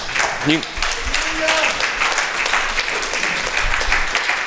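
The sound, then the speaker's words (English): An audience claps steadily for several seconds, a dense crackle of many hands, with a few voices calling out over the applause. “even if you didn't clap, we're still going somewhere.”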